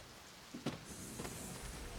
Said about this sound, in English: And it's raining.